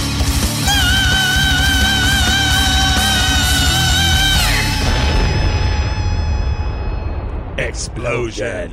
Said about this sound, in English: Explosion.